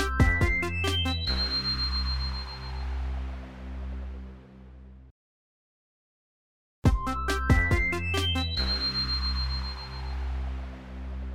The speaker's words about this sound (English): Let's see if he'll pick up. He probably won't. We call each other all day. And now is the one time he's not going to pick up the phone.